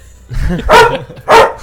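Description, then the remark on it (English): A dog gives two sharp, loud barks spaced about half a second apart, preceded by a brief low growly whine. “Hey, stop barking.”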